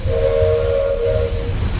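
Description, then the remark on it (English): A steam train setting off sounds its whistle in one long, steady blast over a loud, low rumbling, chugging engine, with no voices. “What about the sound we've heard when it sets off?”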